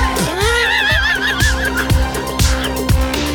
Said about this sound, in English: Why do you scream like that? It's about COVID.